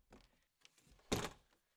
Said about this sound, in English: You know what? Let me go outside and clean it up. I'm just going to open up the door here.